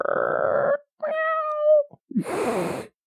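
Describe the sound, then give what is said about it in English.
A black cat meows three times as a Halloween sound effect, each call shifting in tone, from a low rough yowl to a clear, drawn-out high cry and then a wavering, growly wail, with short pauses between. “Black cat. Yeah, that cat changed tones pretty quickly.”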